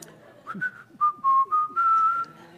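Someone whistles a short tune, a few quick rising notes followed by longer held tones that slide gently in pitch, clear and fairly loud with nothing else competing.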